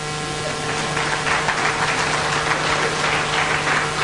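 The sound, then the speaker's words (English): A crowd applauds steadily for about four seconds in answer to the question of how many present are someone's child, a dense, even patter of many hands clapping at once, with a faint low hum underneath. “But just out of round of applause, how many here are a child of someone?”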